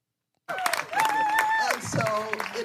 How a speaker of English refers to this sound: And the fact that people are actually cheering this, and these are Americans cheering this, is just unbelievable.